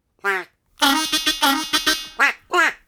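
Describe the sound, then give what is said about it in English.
Ducks on a newly refurbished pond quack loudly: a single call, then a rapid run of harsh, nasal quacks, followed by two more drawn-out calls near the end. “Are the ducks enjoying their newly refurbished pond? So far, the ducks are happy.”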